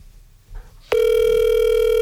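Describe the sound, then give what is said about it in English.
After a near-silent start, a loud telephone ring cuts in abruptly, a steady buzzing electronic tone that holds unbroken to the end, with no one speaking. “Man, that is a strong ring.”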